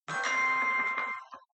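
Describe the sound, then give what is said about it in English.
A short burst of a mobile phone ringtone, a bright electronic chiming melody with steady ringing tones, fairly loud, lasting just over a second before cutting off. “sorry, let me turn no, my phone it's okay.”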